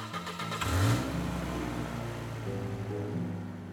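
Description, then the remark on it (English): A car engine revs up sharply near the start, then settles into a steady mid-pitched drone as the car pulls off on a Friday afternoon and keeps moving. There is no talking. “Back in February, my wife and I got into our car on a Friday afternoon and drove away.”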